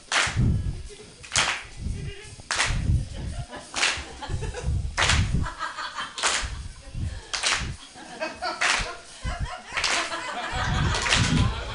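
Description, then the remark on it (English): A crowd claps together in a steady, slightly loose rhythm, about one sharp, loud clap per second, with scattered murmurs and faint laughter between the beats. “No, keep clapping.”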